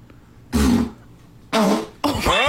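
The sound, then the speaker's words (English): Three loud, buzzy fart sounds in quick succession: a short blast, a pause of about a second, then two longer rasping ones nearly back to back, prominent. “So they guess first, and then you hear the actual windy pop.”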